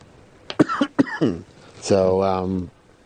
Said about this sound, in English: Well, we can see you still have a cough.